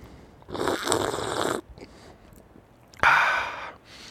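slurping coffee

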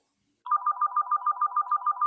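telephone ringing

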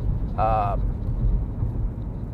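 car interior driving noise

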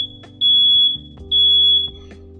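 alarm beeping

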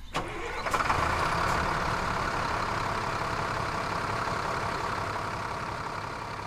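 truck engine running

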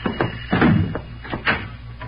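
knocking on a door

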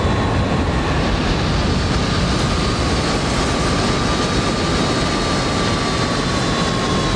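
airplane flying low overhead

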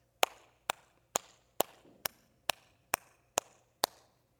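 hand clap

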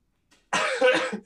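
cough

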